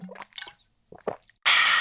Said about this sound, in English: That's the first sip of coffee I've taken sitting. And it didn't even get knocked into my lap.